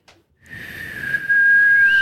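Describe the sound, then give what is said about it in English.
A shrill, steady whistle from a Bird Dogs whistle-tip football thrown hard rises out of rushing air, starting half a second in and growing louder near the end, piercing with no voices. “you just blew Timo out of the building”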